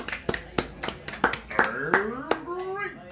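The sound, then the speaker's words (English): A short, uneven round of hand clapping, about eight sharp claps over three seconds, moderately loud, with voices whooping and cheering alongside; a little congratulatory clap for Frosties cereal. “Can we just have a little congratulatory clap for Frosties?”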